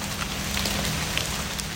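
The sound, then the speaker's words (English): Rain, which has grown a little more intense, patters steadily on forest leaves, a dense, continuous hiss sprinkled with faint individual drop ticks, with no voices. “And it is actually raining now. You can hear that it got a little bit more intense.”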